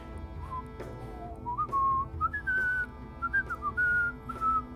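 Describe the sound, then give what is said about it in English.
Someone whistles a melodic tune along with a flute, clear, with sliding pitch changes between sustained notes over a steady low background hum. No one speaks. “I'm gonna try singing, like whistling along with the flute as well.”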